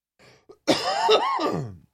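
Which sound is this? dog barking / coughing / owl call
coughing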